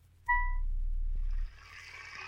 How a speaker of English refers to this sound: In a few minutes, Mr. Farmer poured a big bowl of milk for Patch.